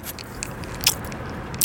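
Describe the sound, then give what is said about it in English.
Someone bites down on a hard Halls brand cough drop, cherry or strawberry flavored, making a few sharp, dry crunches, two louder than the rest, with soft mouth clicks in between and no talking. “I thought I had the off-brand Walgreens drops, but it turns out I put a Halls brand cough drop in the Walgreens bag.”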